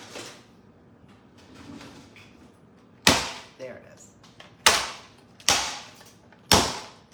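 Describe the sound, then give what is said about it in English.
A hammer strikes a hard candy object four or five times to break it up into pieces, each blow a loud, sharp crack at irregular intervals, with a voice speaking briefly between the hits. “Let me break it up a little more. I'm gonna use a hammer like a normal person.”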